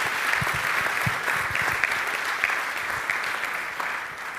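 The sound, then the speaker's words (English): A church audience applauds the church's youth steadily, a dense wash of many hands clapping with no pauses, sustained and fairly loud throughout. “Can we give one more round of applause?”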